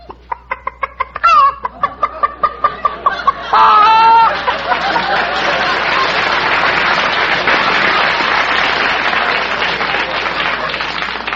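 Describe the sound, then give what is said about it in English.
A person mimics a chicken, with a quick run of rhythmic clucks that rise into a loud squawking cackle, followed by several seconds of steady applause from an audience. “You mean make a noise like a chicken?”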